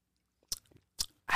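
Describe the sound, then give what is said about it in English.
Someone takes a few quick sips of green tea: three short, soft slurping bursts separated by brief pauses, with no talking. “Let me take a sip, because I got to break this down.”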